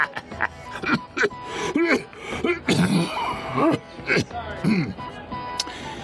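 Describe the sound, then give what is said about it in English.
Harsh, chesty coughing bursts out repeatedly, mixed with breathy laughing and vocal sounds, fairly loud, with irregular hacking spread across the whole stretch. The cough comes from a slight affliction of the chest. “Unfortunately, the laugh is overshadowed by my miserable cough.”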